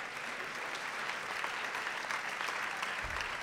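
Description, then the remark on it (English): A crowd applauds steadily at a live debate event, dense clapping filling the space at an even, sustained level from start to finish, with no voices standing out. “All right, let's give it up.”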